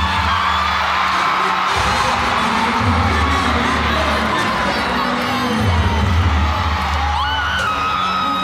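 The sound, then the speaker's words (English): A large concert crowd in Mali cheers and screams wildly as a performer holding a kora appears on stage, with high shrill whoops over a dense roar, while a deep thumping bass pulse throbs underneath in a steady pattern, loud and continuous throughout. “Suddenly, a handsome, slender fellow appears on the stage. He's holding a kora, but he doesn't play it. It's more like his signature, his totem. And the crowd goes wild.”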